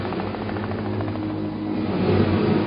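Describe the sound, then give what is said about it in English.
A helicopter, called in at night during a gun battle, flies with its rotor beating out a steady, rhythmic thrum over a low engine drone. The sound holds constant and swells slightly toward the end, with no voices. “A second gun battle erupts that night when a helicopter is called in.”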